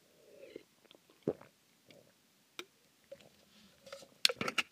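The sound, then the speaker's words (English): Quiet drinking sounds of juice being sipped: a few sips and swallows with small wet mouth clicks and soft gulps, spread unevenly over several seconds with no talking. “Oh, let me get a sip of this juice.”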